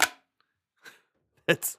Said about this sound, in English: I feel so disrespectful that I just smashed two old Coors Light cans together. It should have been thrown away a month ago.